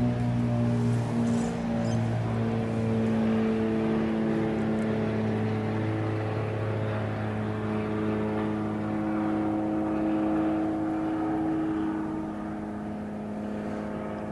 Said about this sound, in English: I'm going to come back to that airplane.